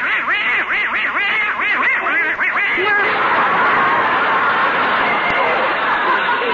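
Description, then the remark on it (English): A little duck quacks rapidly and loudly for about three seconds in front of a fireplace on the night before Christmas, then a dense wash of crowd noise, like an audience reacting, takes over and fills the rest. “Only Gracie and Herman, their little duck, are still downstairs in front of the fireplace”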